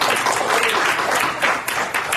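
A crowd claps hands together in a dense, steady burst of applause, the many overlapping claps blending into a loud, even wash of sound with no speech over it.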